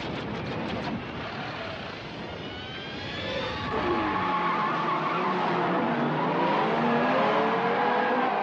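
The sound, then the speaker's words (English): Racing cars roar past at speed with tires squealing and skidding, engines whining in rising and falling pitches, loud and continuous for several seconds with no voices. “The techno, it's like cars, everybody's excited, and you're going fast.”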